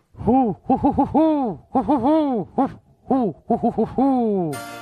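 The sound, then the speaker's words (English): An owl hoots in a rhythmic series of rising-and-falling calls, loud, grouped into quick bursts with longer drawn-out hoots, ending on a descending note. “Was that a real owl or a fake owl?”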